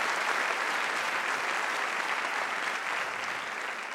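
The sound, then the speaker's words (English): A church audience applauds their pastor steadily, a dense wash of many hands clapping at an even, sustained level for several seconds with no voices rising above it. “Would you just give it up for your pastor? I just want to just applaud them.”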